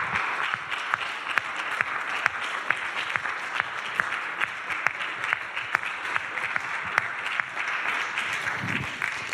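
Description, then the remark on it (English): An audience claps in sustained applause for the ladies at a gathering, a dense patter of many hands with sharp individual claps popping through, steady in volume across the whole stretch with no voices. “And guys, can we give our ladies a big round of applause?”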